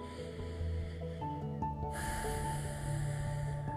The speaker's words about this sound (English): So let's take 5 breaths and just let your mind focus and put its attention upon the breathing. Something as simple as that. All right, 5 breaths. 1.